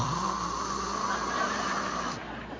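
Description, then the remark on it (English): A raspy, guttural breath dragged out for about two seconds, a person's voice imitating the irritated, snore-like breathing of a tween, likened to Darth Vader gargling mouthwash, before it trails off. “That guttural breathing that sounds like Darth Vader is gargling mouthwash.”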